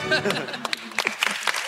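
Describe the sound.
A round of applause closing a special edition of Climate Week, with scattered claps coming fast and unevenly at moderate loudness, overlapping with voices at the start.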